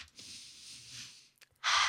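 A person imitates breathing fresh air, taking a long, exaggerated deep breath in through the nose, followed by a short pause, a quick sniff, and then a loud, airy exhale.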